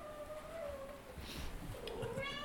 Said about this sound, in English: We've got a sort of cat making an appearance there, but anyway, that's fine.